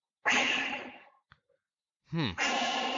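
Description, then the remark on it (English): A human voice imitates a bull elk's wheeze: a long, loud, breathy exhale, a brief pause with a small click, then a second harsh rushing breath that starts with a rising squeal. “You'll hear these bulls kind of wheeze.”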